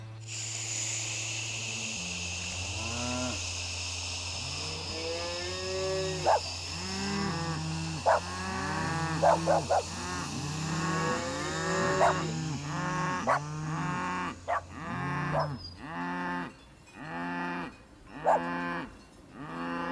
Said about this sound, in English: The cows bellowed in distress, and the dog began to bark wildly.